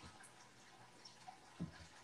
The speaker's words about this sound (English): He just wanted to listen to the water some more. That's all.